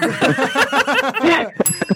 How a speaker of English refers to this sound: I got the bells.